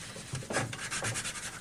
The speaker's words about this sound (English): We're sanding the cupboard that we just painted. Because I want it to look old, really old.